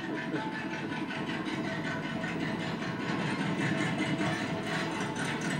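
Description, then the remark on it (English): A steady, rumbling car engine idles throughout, its low exhaust drone holding an even loudness with no breaks or rises, with no voices. “Or if they're just like uncorking the exhaust from the exhaust manifold.”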